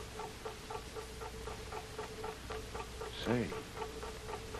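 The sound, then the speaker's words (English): A steady, regular ticking of a big clock repeats about every half second, muffled as it comes from behind a wall in the forward hold of a boat, with a brief louder burst of sound partway through. “That big clock, Tuan, like I tell you.”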